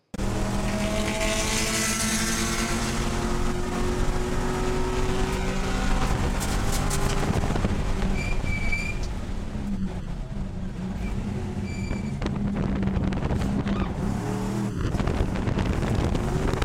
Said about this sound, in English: We have a video of you racing a car. Let's see the first video to see what we're looking at here.